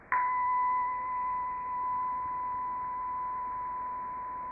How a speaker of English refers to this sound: There's something beyond the concept, the direct experience of the sensations themselves that can't be named, can't really be described. There's something else going on that the language can't touch. The same as when you hear a bell.